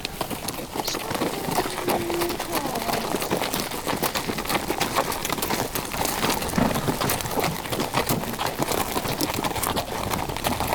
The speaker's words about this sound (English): Just that lull of the hooves up beneath me.